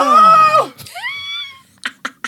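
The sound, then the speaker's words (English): A loud, excited, high-pitched scream: one long shriek, then a second rising one, followed by three short sharp bursts. “The gay scream heard across the Pacific Ocean.”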